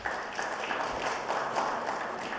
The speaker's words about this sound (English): Clap. That's good.